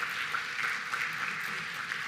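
Steady audience applause, a dense wash of many hands clapping at an even, sustained level for about two seconds with no voices standing out.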